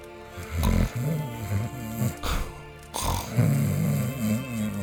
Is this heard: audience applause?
no